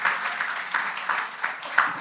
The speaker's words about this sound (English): Who is here for the first time again? If you can raise your hands. Wow. God bless you. Round of applause to them as well. Amen.